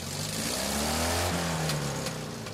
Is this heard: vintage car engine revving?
yes